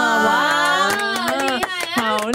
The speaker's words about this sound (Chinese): 再鼓掌一次， 真的，你让我们团队打了强心针啊！